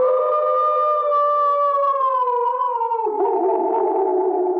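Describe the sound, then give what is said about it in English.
A long, loud howl from a wolf or dog, holding a steady tone and then sliding gradually lower, with a rougher, wavering stretch near the end. No one speaks. “I know a lot of people would say the sound of the wolf or the dog howling, no.”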